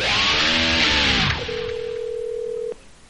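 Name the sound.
telephone dialing and ringing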